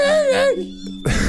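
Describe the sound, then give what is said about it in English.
A person mimics a puppy's whimper with a single high, thin whine that wavers and slides downward before trailing off, followed by a short breathy burst of noise. “So it sounded like a puppy.”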